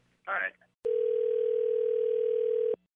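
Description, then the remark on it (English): A brief burst of voice, then a single steady electronic phone ring tone as a caller is conferenced in, held for about two seconds, loud and clear as if heard through the line, before cutting off. “When you start hearing the phone ring, it's going to be all you.”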